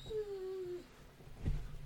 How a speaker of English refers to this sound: is little doggy Max. He was whining.